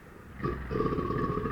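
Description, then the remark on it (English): A deep, rumbling crocodile growl starts after a short quiet lead-in and holds steady as a low, rough, vibrating grumble for over a second, with no talking. “Listen to a crocodile. Yep. Sounds about right. That's a beast, baby. That grumble.”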